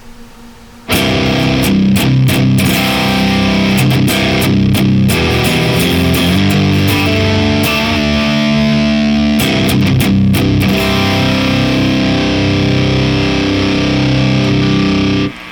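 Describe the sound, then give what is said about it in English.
A heavy, distorted guitar tone from the Dog Water pedal, a modified Rat-inspired circuit, as captured by a Cortex, plays loud and saturated, with thick buzzing harmonics and shifting sustained chords broken by brief choppy stutters, following a moment of quiet at the start. “And then when the Cortex captures it, it makes it sound totally metal.”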